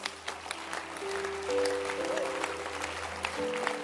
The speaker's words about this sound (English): You have Jesus. Can you clap your hands?